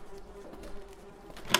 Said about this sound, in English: What is that? It sounds like the electricity's messed up.